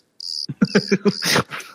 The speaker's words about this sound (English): I love when Arthur gives us the old crickets.